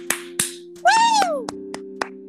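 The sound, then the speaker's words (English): A handful of sharp, scattered handclaps in an uneven rhythm, with a brief rising-and-falling whoop midway, all over a steady low hum. “So give us a round of applause.”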